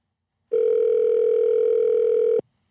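A steady, unbroken telephone dial tone, heard while a call is being placed, hums at a constant mid pitch for nearly two seconds, loud and alone, then cuts off abruptly.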